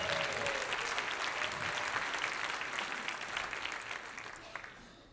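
A crowd claps steadily in a dense wash of applause that holds strong for several seconds, then gradually thins and fades toward the end.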